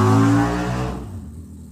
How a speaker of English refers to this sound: did you just ride away on your motorcycle? Yes. You wanted excitement.